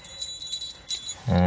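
A little bell inside a small geocache container holding a few trinkets jingles with bright, high tinkling in a few quick shakes, its ring lingering between them, before a man's voice starts speaking at the end.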